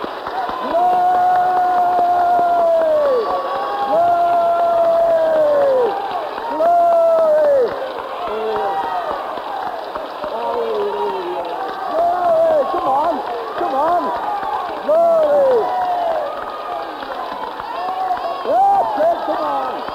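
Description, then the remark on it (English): A large group claps and cheers together for Jesus in praise for a sustained stretch, with many voices whooping and calling out over steady, dense applause. “Before we do any more, let us all give Jesus a hearty clap.”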